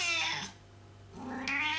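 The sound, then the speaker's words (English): Two drawn-out cat meows, fairly loud, with strong harmonic wails separated by a brief quiet gap; no one speaks. “Ooh, next time you go shopping, Ali, can you pick up some cat biscuits?”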